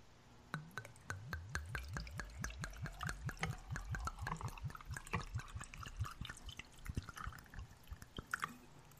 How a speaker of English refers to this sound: I've got a cup of ice. With my weird rubber straw, my reusable straw. Let's see. So first we're going to pour in the vodka. All right. And this is the amount you want to use. Just go by the sound.